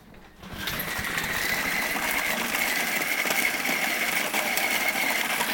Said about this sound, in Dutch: Je mag hem even in de blender. Normaal gesproken werk je dus met oud brood. Als je dat nog niet hebt gedaan, dan zou ik zeggen, gebruik de blender.